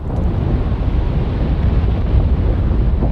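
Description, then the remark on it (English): A deep, steady rumbling roar of melting glacier ice breaking off and falling into the sea, loud, with a dense low booming texture and no clear pauses or talking. “recording glaciers as they melt slowly or suddenly fall into the sea”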